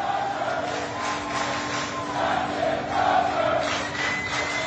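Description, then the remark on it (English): Hundreds of a ship's crew gathered in a huge hangar bay chant and cheer for Captain Crozier, a dense sustained roar of many voices rising and falling in rhythmic surges, echoing through the space. “And as he walks down the gangway off the ship to an awaiting car, and it's a scene, it's just remarkable, Michael, and that the whole crew that's gathered, hundreds in this huge hangar bay, are chanting and cheering for the captain.”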